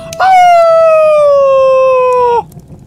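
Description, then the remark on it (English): A single long, loud wolf howl holds a steady high pitch for about two seconds, sliding slightly downward before cutting off abruptly, with no talking around it. “"Dear Jennifer," the wolf howled.”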